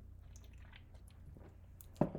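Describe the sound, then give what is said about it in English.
A quiet, wet sipping of Coors Light beer from a can, with faint slurps and liquid noises building to a brief louder gulp near the end, no one talking. “Hold on, I'm going to sip of my Coors Light.”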